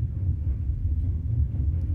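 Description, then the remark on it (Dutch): A train passing overhead, heard as a steady, deep rumble that holds at an even loudness for the whole two seconds, with no voices over it. “Even een trein die er boven langs komt, maar valt wel mee.”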